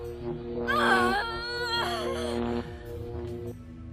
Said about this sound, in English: I'm sorry, I can't hear you over her screams, but I think it sounded like you just told me to stop it.